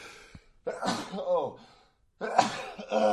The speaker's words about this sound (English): I haven't sneezed in 6 months.